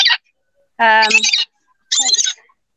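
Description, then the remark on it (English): Three loud, harsh lorikeet screeches ring out in short bursts with gaps between them in an outdoor aviary that also holds racing pigeons. No one is talking, and no cooing from pigeons is evident. “So there's some racing pigeons behind me. There's also some lorikeets.”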